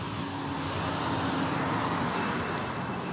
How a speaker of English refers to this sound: They just build a line of traffic sitting at the traffic light. It's POC.